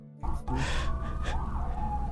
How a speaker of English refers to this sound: The fucking sirens in the background.